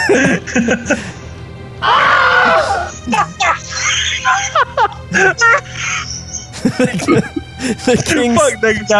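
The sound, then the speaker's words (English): Two boys shout and shriek in loud, excited bursts as they run out of a room and down a hallway, overlapping one another in a chaotic stretch of yelling and screaming that continues throughout, with a slight echo. “The two boys run out of the room and are heard yelling and screaming down the hallway.”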